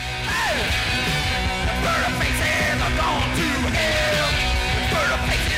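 A loud, raw punk rock song released in 1973 blasts throughout, with dense distorted guitars, pounding drums and a yelling vocal that swoops and slides over the wall of noise.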